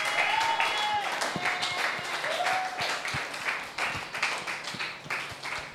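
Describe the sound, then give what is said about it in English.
A church audience claps and applauds steadily for several seconds, a dense wash of many hands with sharper individual claps, while a few voices shout and cheer over the top, giving the Lord a shout and clapping their hands together. “The Lord a shout and clap your hands together.”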